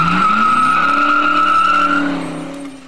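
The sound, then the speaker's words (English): A car engine, a turbo special soapbox racer being floored, roars as it accelerates hard, its pitch climbing while tires squeal in a long, loud screech before the sound eases off and fades near the end. “I turned and opened the now mangled door of my turbo special soapbox racer, tossed my briefcase inside, and started the engine.”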